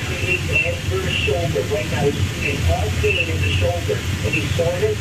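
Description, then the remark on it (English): A muffled, indistinct voice, of commentators or a pastor, echoes steadily through the wall of a home in Lockport, recorded on a phone at about 1:30 in the morning, its words unintelligible, with a low rumbling hum and a constant hiss underneath throughout. “So you hear that voice echoing through the wall.”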